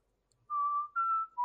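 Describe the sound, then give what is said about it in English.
Someone whistles a short western sheriff-style tune: three clear, sustained notes, the second slightly higher, the last dropping lower, with no talking. “Oh, you're doing the sheriff sounds. I was like, what are you whistling?”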